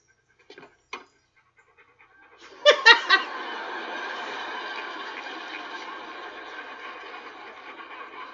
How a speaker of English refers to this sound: basically a lot of panting.